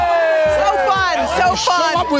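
A studio audience cheers loudly and continuously, with high, rising whoops and shouts riding over a dense wash of crowd noise.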